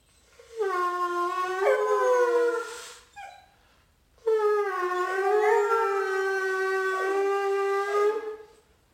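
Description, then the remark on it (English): A puppy howls twice: a loud, sustained, wavering howl of a few seconds, a short pause, then a longer second howl that trails off. No one speaks. “So let's check out a video of my puppy.”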